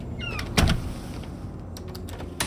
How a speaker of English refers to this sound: Jake closed the door instead of sticking his skeletal hands into the doorway.